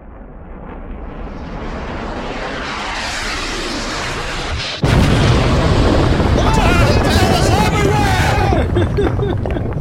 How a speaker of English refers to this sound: And I'll put in an explosion.